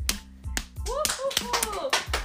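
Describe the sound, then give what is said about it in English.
A child claps for a couple of seconds, a quick, uneven run of sharp hand claps, with bright voices calling out over the clapping. “Okay, give yourself a round of applause.”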